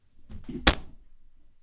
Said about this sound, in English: Hang on a second here. I got to bang on the Zenith. I thought I had this problem repaired. Hang on.